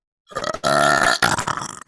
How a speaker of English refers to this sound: No, don't burp at me.